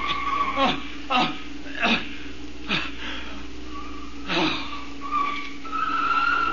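A car skids to a halt, its tires squealing in a few rough bursts with a rising screech near the end, fairly loud amid engine rumble.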